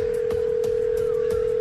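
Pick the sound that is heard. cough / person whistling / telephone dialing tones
telephone dialing tones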